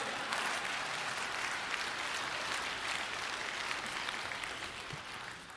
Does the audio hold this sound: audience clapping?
yes